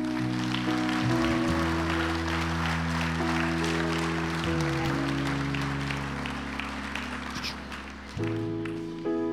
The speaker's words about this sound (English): Come on, let's clap to it.